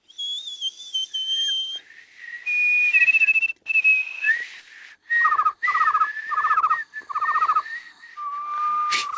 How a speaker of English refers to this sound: So then you're whistling, and you engage that with him.